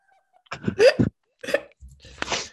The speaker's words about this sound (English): Bless you.